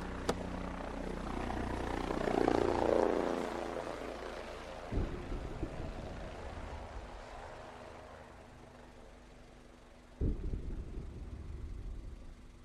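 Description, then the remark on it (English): A helicopter drones overhead, a steady broad rumble that swells to a peak and then slowly fades, with a couple of sharp thumps breaking through partway. “Do you hear that? That's a helicopter.”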